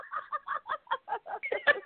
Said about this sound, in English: we're going to cluck a little. Oh, Lord, that was the sound. I can't. I will not. Goodness. I will not. What the fuck was that? Not the cluck.